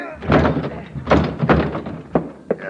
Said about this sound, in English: Crash the door, Logan. Crash it.